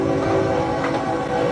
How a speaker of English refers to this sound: And you can hear the train, like, howling as well.